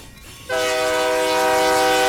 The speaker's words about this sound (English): I don't know how you put up with those trains.